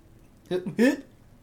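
A person makes themselves gag twice in quick succession, a short choked retch followed by a louder, strained one, against a quiet background.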